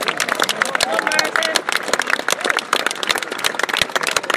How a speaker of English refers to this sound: And last but not least, before we introduce you to the presentation party, a big round of applause for our Chief Marshal, Martin O'Sullivan, and all of the wonderful marshals this week.